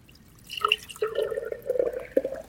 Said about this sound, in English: So this is the pureed watermelon. Okay, now I'm gonna make the mix. So I'm gonna take the watermelon juice and just pour it into a pitcher.